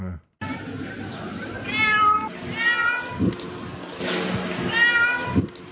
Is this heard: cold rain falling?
no